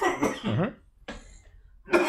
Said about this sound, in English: Yeah, I feel like you coughed into the mic that last one.